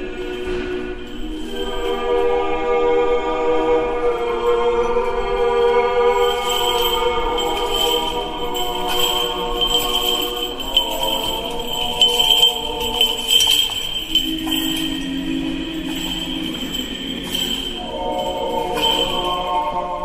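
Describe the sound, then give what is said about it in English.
Metallic clinks and jingles from the chains of a swinging hanging censer burning incense during an Eastern Orthodox service, coming in irregular bursts beneath sustained, harmonically rich choral singing that fills the whole clip. “What you're hearing are the chains from swinging a hanging censer burner, a usually gold-plated, highly decorated, kind of egg-shaped container that burns incense during”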